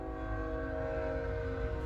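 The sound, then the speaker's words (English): A train rumbles past, its deep steady roar filling the moment alongside sustained tonal horn-like lines, loud and continuous for the whole stretch with no voices. “You just see that train just...”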